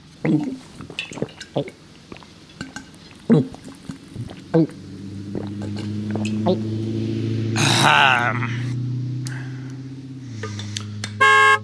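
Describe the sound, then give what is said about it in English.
The horn of the Spirit Mobile, an old converted RV, blares in a long, low, steady honk that holds for several seconds and shifts pitch slightly, following a stretch of clicks and splashy pouring sounds. “Do the other podcasts you listen to have a horn?”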